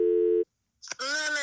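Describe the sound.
A single steady electronic ringing tone from an outgoing phone call sounds briefly, stops, and after a short pause and a click, a voice begins speaking.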